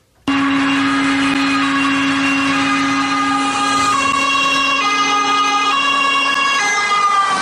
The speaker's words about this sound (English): Okay, so that's an ambulance or like a fire truck or something like that. But from what country? Oh, I knew you were going to do this to me too. I'm going to say England. No. Is it somewhere in Europe? That is correct. That is a European siren sound